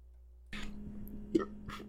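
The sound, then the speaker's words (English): A single low burp rumbles out for over a second as a steady throaty croak with a couple of breathy bursts, and no talking around it. “Oh, I'll have to edit out that burp I just had.”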